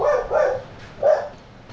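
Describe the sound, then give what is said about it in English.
Dogs bark in a few short, sharp bursts, two quick barks followed by another after a brief pause, clear with no talking over them. “The dogs have found us.”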